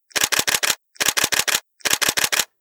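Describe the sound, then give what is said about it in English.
Three quick bursts of camera shutter clicks, each a rapid run of about four sharp, crisp snaps, separated by brief pauses. No one speaks. “The clicks shoot out and sound like the rapid machine gun fire in the days when civil war raged in the bushes around the town.”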